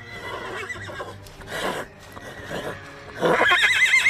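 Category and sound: animal, horse whinnying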